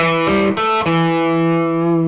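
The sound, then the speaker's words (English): An electric guitar with a distorted tone plays the first four notes of a piece in quick succession, the last one ringing out and sustaining for well over a second. No one speaks. “So those are the first four notes.”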